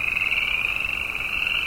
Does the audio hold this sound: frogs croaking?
yes